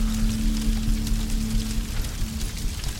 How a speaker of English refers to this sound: The chanting still playing through the unburnt speakers in the other rooms, slowly winding down as the rain pelted my skin.